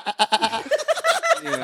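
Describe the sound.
A person imitates a goat's bleat, a rapid, quavering string of nasal pulses that wavers in pitch for under two seconds, loud and unaccompanied by other talk.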